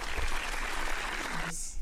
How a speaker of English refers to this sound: Round of applause.